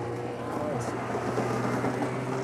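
A snowmobile's petrol engine runs steadily, giving a continuous low, droning hum with a buzzy rumble that holds an even loudness throughout without revving up or down.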